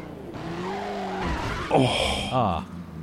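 A car engine strains with a droning, grinding whine, then tires screech and skid in two loud, sharp bursts, with no talking over them.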